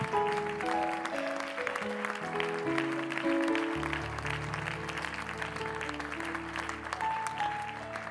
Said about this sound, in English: Can we give the Lord another hand clap of praise together?